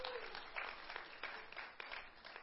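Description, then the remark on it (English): An audience clapping: a dense, steady patter of many hands with a few sharper individual claps standing out, sustained at an even, moderate loudness throughout, with no voices. “I haven't had a clap from you for about 5 years.”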